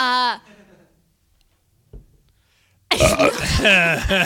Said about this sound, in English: I really thought that time it was going to happen. For those of you listening at home, I thought I was going to burp.